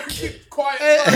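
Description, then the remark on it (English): A man lets out a single harsh, breathy cough, followed right away by a short stretch of voiced sound like him starting to talk. “Oh, coughing”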